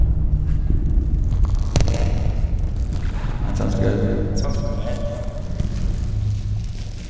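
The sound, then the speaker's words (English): Plastic packaging crinkles and crackles steadily for several seconds, drenched in heavy reverb that makes it boom and wash out, with one sharp snap partway through. “I'm gonna give the audience some plastic ASMR on the package on this.”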